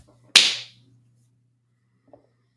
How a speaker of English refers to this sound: I'll take it. I can clap.